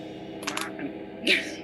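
A few quick hard clicks, then a brighter clattering rattle a moment later as dice are rolled during a tabletop role-playing game, fairly loud over a low background murmur.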